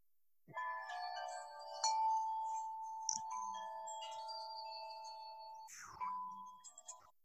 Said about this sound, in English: Okay. I can play it again if you want, if you need it, but those are Aunt Meg's wind chimes. That is correct.